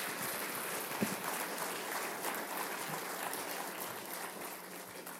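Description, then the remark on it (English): Steady applause from a crowd, a dense wash of many hands clapping at once with no clear rhythm, holding at an even level for several seconds before easing slightly at the end. “Give these folks a hand clap if they have a seat.”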